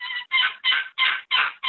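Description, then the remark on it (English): A wooden long turkey box call of butternut with a snake wood lid gives a quick series of about six raspy, evenly spaced old gobbler clucking notes, loud, with no voices. “Just one or two old gobbler clucks like that.”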